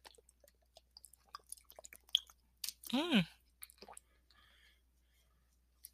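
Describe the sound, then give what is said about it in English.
Someone sips and swallows water: soft wet clicks and slurps, then a louder gulp with a brief voiced, pitch-bending sigh in the middle, followed by quieter mouth sounds. “Hold on, maybe I might decide not to say anything after I drink some water.”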